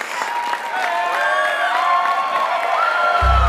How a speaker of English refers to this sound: Let's have a round of applause for Joe. And thank you so much for hosting the Adam Ritz Show here at Texas A&M Commerce.